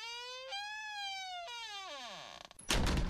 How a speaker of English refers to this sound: Go on, give the door. Open the door there.